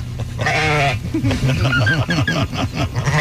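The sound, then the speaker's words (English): Sheep bleat loudly: one long quavering cry, then a run of shaky, wavering bleats overlapping one another, as if several animals are calling at once. “Sheep don't do it for me.”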